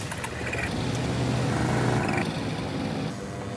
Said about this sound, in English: This thing, it's not exactly a fighter jet. It's some sort of paraglider with a giant fan, but you get two guys with a machine gun, and look at what they put together here.